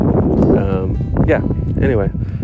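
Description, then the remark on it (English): Loud, continuous wind buffeting the microphone creates a heavy low rumble throughout, with a person speaking over the roaring gusts while playing disc golf on hole seven, a 315-foot hole, with the wind blowing straight into their face. “It's very windy. It's really affecting my scores, but I'm trying not to let it bother me too much.”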